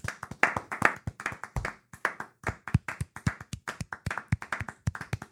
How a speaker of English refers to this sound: And can we just do now, and I'm hoping the listeners will join us, just a 10-minute clap. If you just...